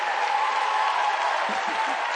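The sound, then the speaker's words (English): An audience claps and shouts together in a steady, dense wash of applause and raised voices, loud and sustained without a break, with a few low vocal bursts rising near the end. “Oh, come on, clap them with salt. Oh, come on, shout with salt.”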